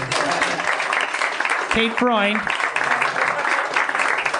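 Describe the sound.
Sustained crowd applause fills the whole stretch, dense and steady, with a brief rising whoop or cheer from a voice cutting through partway.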